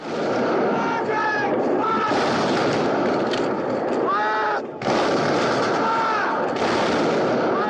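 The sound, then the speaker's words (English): A loud, chaotic battle soundtrack from the old war movie Zulu, in which British soldiers are attacked, playing on an old TV set. Dense gunfire and artillery booms pile up continuously while shouting voices rise and fall through the din, with only a brief dip partway through. “And, you know, it's a big-time war movie. There's a lot of action and yelling and screaming and shooting and a lot of noise like that.”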